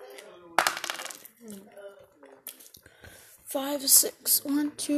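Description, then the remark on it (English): Dice rattle and clatter across a game board in short bursts of hard clicks, fairly loud, with people talking over and between the rolls. “Give me the dice, please.”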